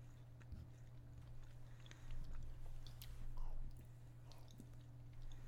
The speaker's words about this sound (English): I'm trying not to chew directly into our listeners' ears. Uh-huh. This is delicious.